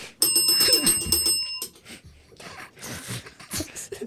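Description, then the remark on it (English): A bright, high-pitched bell rings steadily for about a second and a half, loud, then cuts off, leaving a jumble of muffled noise and indistinct voices. “Bell, bell, bell. Bell, no, bell.”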